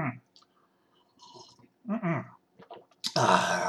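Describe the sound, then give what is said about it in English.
Someone drinks a glass of water, with a few wet gulps and soft mouth clicks separated by short pauses, then a loud, breathy exhale at the end. “I got a glass of water.”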